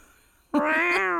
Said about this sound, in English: Might be time for Maya to bring in that cat sound.